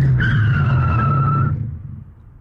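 Car tires screech in a sustained high squeal over a low engine rumble, lasting over a second before cutting off as the vehicle skids to a stop and the noise fades.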